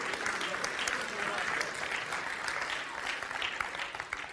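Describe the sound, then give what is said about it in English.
A church audience claps steadily and continuously at the preacher's call, a dense wash of many hands applauding at once, even in loudness, with faint voices mixed underneath. “I want you to clap your hands and say, Jesus, I'm going to step into my blessing.”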